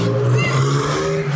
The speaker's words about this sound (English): Taking off around the corner, the now highly agitated and desperate man tries to stop this white car. It speeds off.